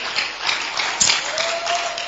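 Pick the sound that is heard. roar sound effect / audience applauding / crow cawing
audience applauding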